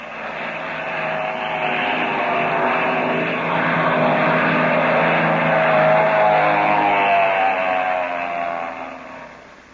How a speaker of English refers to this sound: There's a black plane coming over the top of that ridge. Oh. And he's heading straight for us.